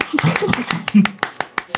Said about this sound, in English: Yes, I am too inclined to clap.